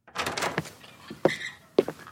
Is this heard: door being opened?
yes